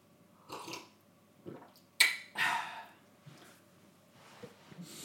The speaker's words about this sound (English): Hold on, let me drink water.